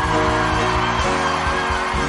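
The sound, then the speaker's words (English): An audience claps and gives a victorious shout to the Lord together in a loud, continuous roar of cheering and whoops, with a steady low musical drone underneath throughout. “Give the Lord a clap and a victorious shout.”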